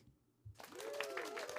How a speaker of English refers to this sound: That's what those people sound like in that second clap. They sound like somebody's like holding a gun to them or something.